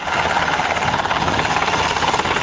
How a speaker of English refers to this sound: President Bush left Biloxi by helicopter for an aerial tour of the damage.